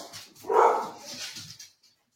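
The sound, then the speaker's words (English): Dogs barking in a short burst, one strong, loud bark near the middle with a few softer yips around it, fading out after a second or so. “My dogs are barking at something.”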